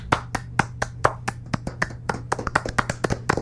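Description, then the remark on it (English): Brisk hand clapping, roughly seventeen sharp claps in a quick, fairly even rhythm that tightens slightly toward the end, over a faint low hum with no voices. “So if everyone's in agreement, can I get a big round of applause for me?”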